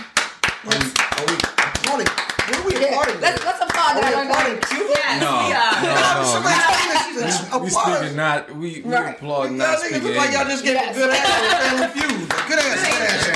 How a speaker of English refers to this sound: We applaud.